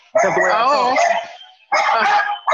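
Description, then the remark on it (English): Dogs barking loudly: a long, drawn-out wavering bark, a pause, then another bark with a third cut off at the end. “I'm sorry, guys, my dogs.”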